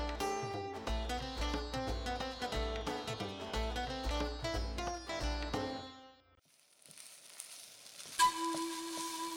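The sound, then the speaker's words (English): Rhythmic music with pulsing bass plays for several seconds, then gives way to a steady, bright sizzle of aunties cooking food with curry leaves, garam masala, cumin and anise, joined near the end by a sustained low tone. “Listen to the sounds of your aunties cooking.”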